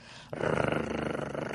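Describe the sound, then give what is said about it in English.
A loud, throaty growl starts abruptly and rumbles on for over a second with a rapid rough pulsing, ending in a brief harsher burst. “What does she growl at your balls?”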